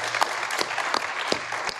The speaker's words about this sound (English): Let's clap it up for that question. Very thoughtful. Thank you.